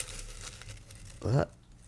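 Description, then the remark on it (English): Crinkling and rustling of a green paper slip being pulled from a prompt jar, a soft, continuous papery texture, followed by a short voiced sound near the end. “We have a kind of ugly green piece of paper.”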